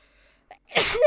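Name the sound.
sneeze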